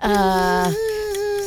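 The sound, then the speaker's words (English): A person vocally imitates a whistling tea kettle during a timed 20-second sound-guessing game: one sustained, steady tone lasting over a second, shifting to a thinner, purer pitch about halfway through, fairly loud and alone. “Tea kettle. Got it.”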